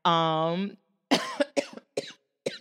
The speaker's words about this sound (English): I'm so sorry for coughing and everything, but I want to stay consistent and make sure that I'm showing up for this every week.